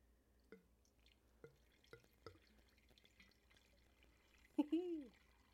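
Vodka being poured gently into a small wooden barrel: a few scattered drips at first, then a short gurgling splash as the pour flows in.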